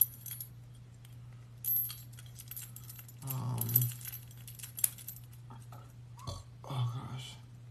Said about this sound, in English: I feel like at this point all I need is like two keys. I don't really need all this other keychain and stuff. So let me take the rest of this off of here.